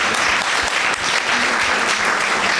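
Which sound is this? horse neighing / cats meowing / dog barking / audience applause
audience applause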